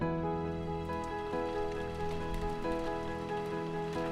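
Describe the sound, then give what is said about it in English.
Steady rain patters and drums on the roof of a shanty in a constant wash of drops, with a sustained tonal hum running underneath and no voices. “Abby and Sonny continued to talk and drink tea as the rain drummed on the roof of the shanty.”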